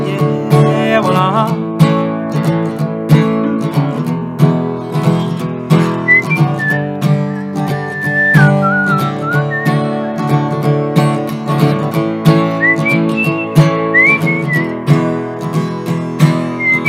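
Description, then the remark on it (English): A cowboy-style tune whistled by a person, the sliding notes rising and falling in short phrases over steady strummed instrumental backing that plays throughout at moderate volume. “There's that cowboy whistle.”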